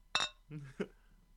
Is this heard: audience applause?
no